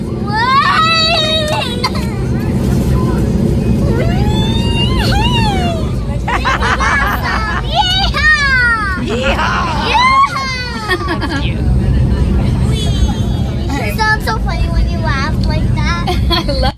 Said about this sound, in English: Well, here's a 4-year-old who was screaming with joy. She was so thrilled to be happy to be on the plane. How awesome is her first flight? Take a listen.